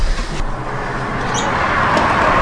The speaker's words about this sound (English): And I live on a pretty busy street, so that's how you hear all the cars.